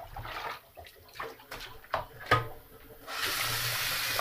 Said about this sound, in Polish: Pozostało mi tylko spłukać. Nie wycieram, bo samo wyschnie. Spłukać. Wylać wodę.